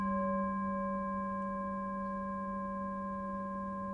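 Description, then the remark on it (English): A meditation bell rings out in a long, steady hum of layered pure tones, a low fundamental with several bright overtones, fading only slightly over four seconds with no voices. “What I'll do is I'll train you how to use this experience even without a bell. But we'll start off with the bell.”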